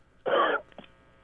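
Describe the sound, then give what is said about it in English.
A single harsh, rough cough bursts out loudly for about a third of a second, followed by a brief, much fainter catch of breath. No one speaks. “That cough did sound pretty rough.”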